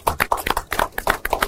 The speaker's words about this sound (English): So just give yourself a round of applause for coming, because I appreciate that.